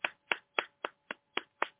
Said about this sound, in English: I'm going to clap for myself.